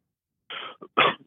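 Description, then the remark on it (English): A sudden sneeze: a breathy rush of air, a brief catch, then a sharp, loud explosive burst, with no talking around it. “Apologies. Bless you.”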